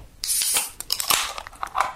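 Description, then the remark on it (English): A sharp pop and a burst of fizzing hiss as a beer can is opened in a hotel room, followed by several quick metallic clicks and snaps of more beer cans being cracked, with no talking. “Crack them open. You having one as well?”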